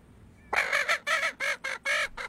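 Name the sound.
chicken clucking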